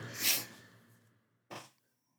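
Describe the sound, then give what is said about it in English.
Two muffled, faint coughs as the speaker turns away from the mic: a longer, breathy first cough, then a short sharper one after a brief pause. No one speaks. “I'm going to keep turning away to cough.”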